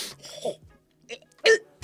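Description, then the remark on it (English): A person dry retches, a string of harsh, throaty gagging heaves with short pauses between them, the last two bursts the loudest and most forceful. “Sorry, that was a legit actual dry reach.”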